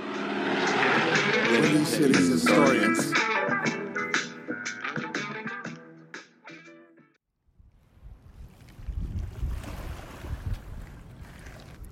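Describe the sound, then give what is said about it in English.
Voices fill the first half, then a deep, steady engine rumble of four large ocean freighters heading down the Mississippi River at New Orleans, lined up one after the other, takes over, low and broad with faint water wash above it. “I'm looking at four freighters heading down the river.”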